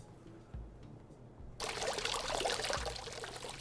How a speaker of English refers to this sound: That's the sound she heard. Water.